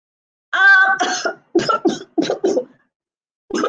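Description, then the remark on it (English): A loud coughing fit from an old woman who has a bad cough: a strained, wheezy first cough followed by several harsh coughs in quick succession, then another cough after a short pause. “coughing again.”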